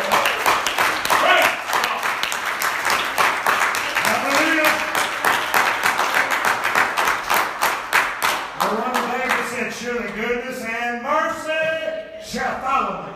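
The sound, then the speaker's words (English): A crowd claps steadily and rhythmically, sharp hand claps repeating over several seconds, while voices rise in enthusiastic talk and cheering over the clapping toward the end. “Would you clap your hands?”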